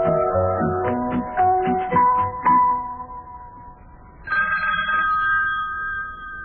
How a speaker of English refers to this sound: Well, lad, telephone's ringing again. Well, boy, I'm not going to answer it. No, sirree, not me.